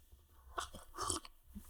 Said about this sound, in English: Now, I'm just going to continue sipping my 3 milligram dose of borax before we return to the farming focus.